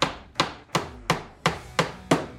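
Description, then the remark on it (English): A hammer strikes repeatedly in a steady rhythm while a bathtub car is being built, about seven sharp knocks with short ringing decays, and no voices. “Hammer. Hammer.”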